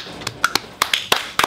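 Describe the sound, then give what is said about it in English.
A quick, uneven burst of about eight sharp, forceful hand claps, loud and crisp, some landing close together, with no voices present. “I like the claps. Always. I like the aggressive claps.”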